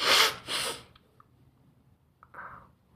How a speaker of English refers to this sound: I gotta blow my fucking nose. I don't give a shit anybody's watching. I gotta sneeze, and it's just going badly.